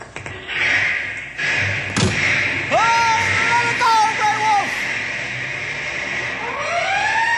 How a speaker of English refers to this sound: We take fire engine plenty quick. It got blankets and everything we need. Yeah. Let's go, boys! Follow us! I'll get the cab door open.